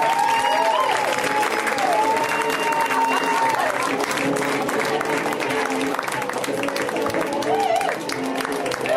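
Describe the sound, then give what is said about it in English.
Loud, sustained audience applause at a comedy show in L.A., welcoming comedian Phoebe Robinson, fills the whole stretch, a dense steady wash of clapping with scattered cheers and whoops rising above it. “Give it up for Phoebe!”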